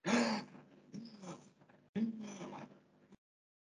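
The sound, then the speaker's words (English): A person takes several quick, audible breaths in a row, voiced gasps and heavy exhales, demonstrating short but not shallow breaths like someone catching their breath after running, then silence. “And so they talk about catching their breath. Let me catch my breath.”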